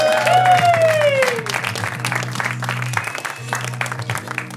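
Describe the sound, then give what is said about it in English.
Audience applause for comedian Max Silvestri: a dense, steady patter of many hands clapping throughout, with a brief high whistle sliding downward at the start over a low constant hum. “Give it up for his friend's boss.”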